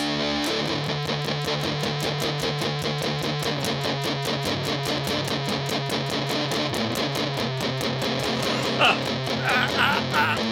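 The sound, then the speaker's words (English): A distorted electric guitar, set to its humbucker pickup with full bass, plays continuously with a thick, bass-heavy tone, dense sustained chords and a steady rhythmic pulse, loud with no talking. “I'll go full bass, full hum. Here's your full bassy humbucker.”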